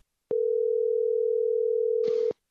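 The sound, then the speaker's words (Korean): A steady, unbroken telephone dial tone hums for about two seconds, clear, ending with a brief click and a short burst of line noise as a phone interview call to author Park Sang-young connects. “아, 박상영 작가님과 전화 통화가 가능한가요? 가능하죠. 저희가 준비했습니다.”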